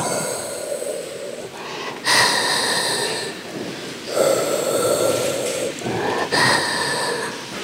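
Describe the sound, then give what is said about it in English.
A hospital respirator, used for a patient in a coma, breathes in a slow, steady rhythm, each cycle a loud hissing rush of air followed by a softer exhale, repeating about every two seconds with no voices. “Instead, what we have is this like steady, rhythmic, mechanical breathing.”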